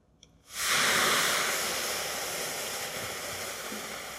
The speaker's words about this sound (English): You can see a whole lot of fizzling happened, which is all of that O2 molecules, all those oxygen bubbles getting released. And also, you might have noticed that this container got really hot. A lot of steam actually came out